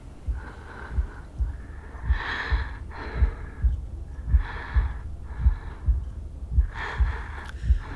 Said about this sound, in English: Listen to them breathing. Breathe with them. In, out, in, and there. Feel your heartbeat match theirs.